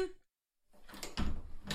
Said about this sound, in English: But just then... The doors flew open, and wouldn't you figure who walked through the door just now?